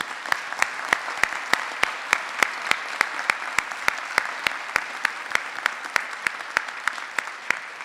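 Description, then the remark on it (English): An audience at a town meeting applauds a man honored for serving the town, elected 14 times to his role, for about eight seconds, a dense, even wash of clapping with sharp individual claps popping out at a steady, quick rhythm. No one speaks. “he served it honorably, and it was a reflection of the esteem that he was held in by our town, the fact that he was elected 14 times to that role, and he did very well, and so I think he deserves a round of applause from each of us.”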